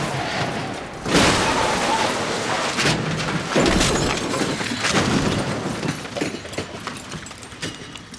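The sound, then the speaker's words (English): An ambulance, driven much too fast by Ving Rhames' character in a film, slams into the back of a sedan with a sudden heavy crash, rotates and lands on its side, with several more sharp crunching bangs and glassy shattering over a steady roar of scraping, rattling debris. “He just wrecks the entire ambulance.”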